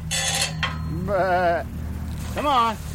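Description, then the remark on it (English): A herd of white-faced sheep bleat twice in quavering, wavering cries on a small acreage just south of Ponca City, Oklahoma, after a brief human call at the start, with a steady low hum of outdoor background underneath. “… runs a herd of white-faced sheep, a breed prized for pure white wool”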